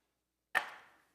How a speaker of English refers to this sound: We're chopping it off. It ain't coming back. It's not coming back.